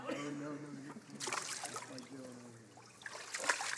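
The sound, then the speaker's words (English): Water sloshes and splashes in a couple of brief bursts as people step into a baptismal tank, with voices talking and murmuring throughout. “We had the tank all set up on Tuesday night for the class, and the girls wanted to know the temperature of the water.”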